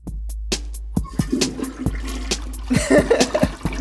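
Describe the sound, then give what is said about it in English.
A toilet flushes, starting with a few sharp clunks and splashes that build into a loud, rushing swirl of water near the end. “So no flush sound this time, maybe? No. What if I do a remix?”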